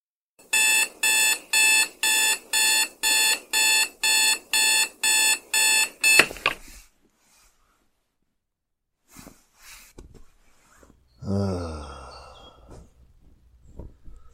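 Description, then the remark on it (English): A loud alarm clock beeps in a steady rapid rhythm, about ten harsh pulses, then cuts off abruptly; afterward come quiet rustling, a thump, and a groggy groan or yawn. “Whoever invented the alarm clock should be shot.”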